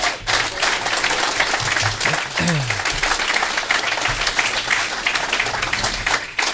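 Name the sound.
audience round of applause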